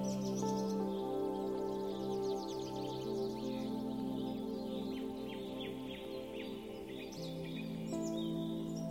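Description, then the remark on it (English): Birds chirp and trill continuously, their bright, quick calls layered over a steady, sustained musical drone with no talking. “Can you hear the singing birds?”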